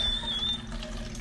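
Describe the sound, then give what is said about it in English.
A steady stream of water trickles and splashes from a filter pitcher into a container, continuous for the whole moment with no voices over it. “And you're pouring more water.”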